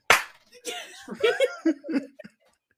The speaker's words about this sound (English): If we would be a tag team, that's what we would do. Okay. We would slap each other. Just rock each other in the face.